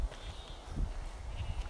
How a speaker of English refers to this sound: so many sheep, so many lambs.